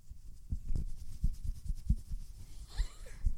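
A steady run of soft, muffled low thumps, a hand repeatedly patting the body of Tarzo, a pet lying between two people, at an uneven beat, with a faint higher rustle or squeak near the end. Nobody speaks.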